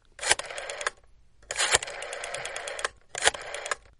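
A telephone being dialed to call a hospital: three separate bursts of rapid mechanical clicking and whirring, each about a second long with short pauses between, fairly loud with no voices.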